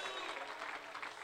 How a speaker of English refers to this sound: Somebody that believes it, clap your hands to the Lord.